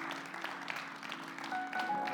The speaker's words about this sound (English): If you want to clap, do it well. Come on, let's give the Lord a big hand of affirmation.